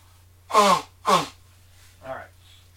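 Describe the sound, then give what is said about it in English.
Someone blows their nose because of allergies in two loud, honking bursts about half a second apart, followed by a softer, shorter snuffle, with a steady low hum underneath. “Hold on, I'm gonna blow my nose.”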